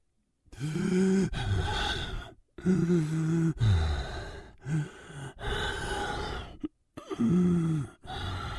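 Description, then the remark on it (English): A father acts out heavy, painful breathing as a voice performance, about six loud, ragged breaths in a row, each strained inhale and exhale edged with a pained, groaning voice and brief pauses between. “So, first you wanted heavy, painful breathing.”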